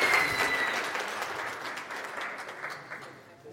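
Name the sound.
audience applause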